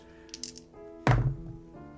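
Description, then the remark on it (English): A few light clicks, then one solid thunk as dice land hard on a table, followed by a short rattling settle, fairly loud, with no one speaking. The dice are rolled for a notice check in a tabletop game. “Go ahead, roll a notice. Okay. All right, I'm switching up some dice.”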